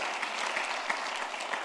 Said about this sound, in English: You can clap for that.